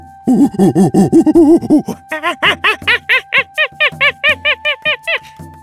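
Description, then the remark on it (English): A long-haired monkey, ringleader of a band, on a branch gives a loud, defiant call: quick low hooting pulses that climb into a steady run of about a dozen shrill, high-pitched screeches, with no talking. “Their ringleader stopped on a branch up ahead and let out a defiant howl.”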